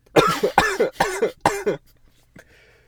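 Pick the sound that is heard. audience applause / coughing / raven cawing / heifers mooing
coughing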